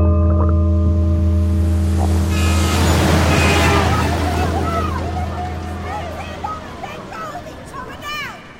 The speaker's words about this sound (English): I am abruptly woken by a brace of noise, a screeching car shouting in the distance.